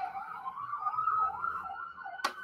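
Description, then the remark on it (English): An ambulance siren wails steadily outside in rising and falling sweeps, muffled, with a brief sharp click near the end and no voices. “It's an ambulance.”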